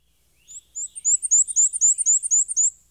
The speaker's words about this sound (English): Here and there I meet the black and white creeping warbler, whose fine strain reminds me of hair wire.